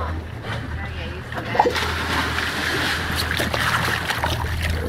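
A single brief splash as someone drops into the water, heard over a steady low engine rumble and constant wash of water noise from a boat.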